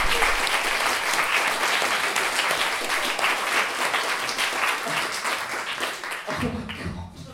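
round of applause

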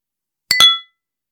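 beer glasses clinking

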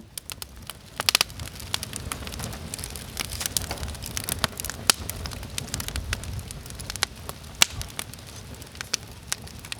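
campfire crackling

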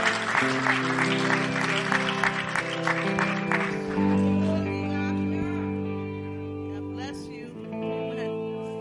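audience applauding

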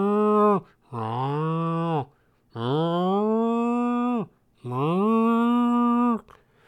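cow mooing

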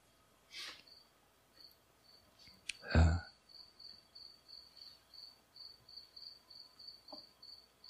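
crickets chirping

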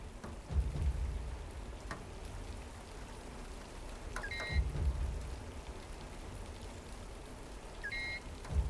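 monsoon rain falling

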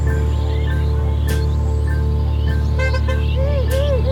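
car horns honking

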